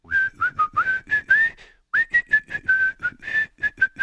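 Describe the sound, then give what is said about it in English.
Someone whistles a bright, lively tune in short, clearly separated notes, with a brief pause halfway through before the melody picks up again. The whistle is fairly loud, with no talking. “You know, I always wanted a whistle in a song that got to be a big hit.”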